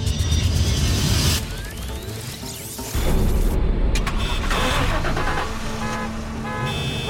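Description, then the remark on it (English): Many car engines start up at once in a parking garage, with engines, horn-like toots and alarm tones layered together, loud and continuous, surging louder about halfway through. “You just turned on every car in this parking garage.”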